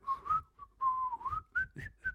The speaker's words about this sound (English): Could you just give me a quick whistle?